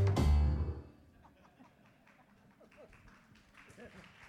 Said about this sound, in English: Seriously, did you just clap for the screen?